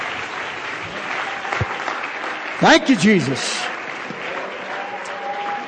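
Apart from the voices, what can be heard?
audience hand clapping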